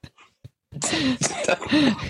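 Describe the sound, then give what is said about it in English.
A coughing fit from a person with a cold, set off by laughing: a few brief, quiet hacks, then a loud, continuous run of harsh, raspy coughs mixed with strained, voiced wheezes that rise and fall for over a second. “every time I make her laugh, it turns into a coughing fit.”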